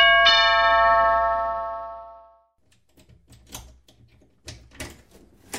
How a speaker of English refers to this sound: … opens his door to house viewer ….